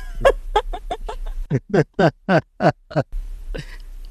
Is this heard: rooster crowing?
yes